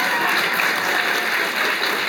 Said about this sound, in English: And I would just ask you for one more round of applause for our guest, who I think you'll agree has been great material, Steve Brawnius.